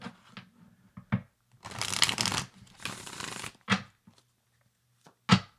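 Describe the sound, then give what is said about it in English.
A deck of cards is shuffled after a card is put back into it: two long, crisp riffling bursts framed by a few sharp taps and snaps as the cards are squared, with no talking. “I'm going to put that card back. I want to do a good shuffle here.”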